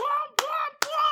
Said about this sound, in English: Still holding the trombone, clapping.